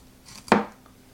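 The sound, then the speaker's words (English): A single crisp cut through a potato with a sharp knife being tested, making a paper-thin slice, a sharp thunk onto the board that fades quickly, with no talking and only faint background hiss. “I mean, paper thin cuts. This thing is sharp.”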